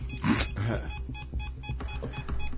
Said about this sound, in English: To see what is making this thing beep. There's got to be some kind there is something of technology in, there. In here.